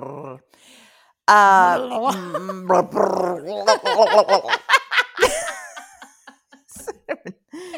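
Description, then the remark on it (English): A person imitates a dog, starting with a drawn-out whiny howl, then a rapid run of loud yapping barks that fade into softer, scattered yips. “I've been alone with two dogs for a long time. They are not beginning to speak, but I'm beginning to talk like them.”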